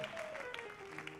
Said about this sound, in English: Somebody keep clapping, celebrate Jesus. We give you all the glory.